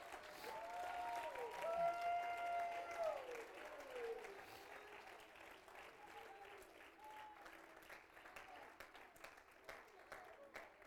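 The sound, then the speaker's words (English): Steady applause from an audience, a dense crackle of many hands clapping throughout, with raised voices calling out over it in the first few seconds before the clapping carries on alone. “Come on, you can clap louder than that.”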